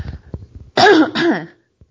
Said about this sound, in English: Excuse me, I have to cough.